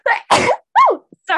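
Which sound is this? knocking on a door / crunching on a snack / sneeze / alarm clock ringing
sneeze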